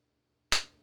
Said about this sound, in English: That's the one solitary clap you get, you greasy bitch.